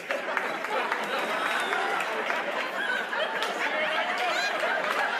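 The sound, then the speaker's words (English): An audience applauds steadily for about five seconds, a dense, even wash of many hands clapping with scattered chuckles and murmuring voices mixed in. “That's what you wanted to clap on?”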